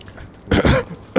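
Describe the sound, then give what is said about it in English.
A small, close cough: one short rough burst followed a moment later by a second brief one, with no talking around it. “You cough a little bit, the smoke is slightly cleared, and you see Fracky holding your drinking horn, pouring it down your throat.”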